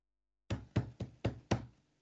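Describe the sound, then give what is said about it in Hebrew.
Five quick, evenly spaced knocks on a table, each a dull, low thump with a short decay, in a steady rhythm with no talking. “זה היה אני דפקתי על השולחן, אז...”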